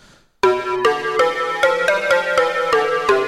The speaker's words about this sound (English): I do like the plucked sounds. Those are kind of cool.